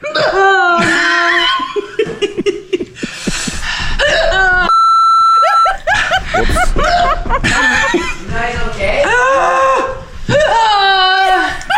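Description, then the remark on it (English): A string of sharp, high-pitched vocal hiccups from someone doing the one chip challenge with a very hot chip breaks out again and again, mixed with giggly laughter, with a brief steady tone partway through. “Here we got the hiccups. Oh, yeah, let the hiccups go.”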